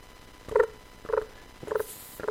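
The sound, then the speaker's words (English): A voice mimics crickets with four short, evenly spaced chirping calls, each a brief tonal burst repeated about every half second, fairly quiet, with no talking. “Those are supposed to be crickets.”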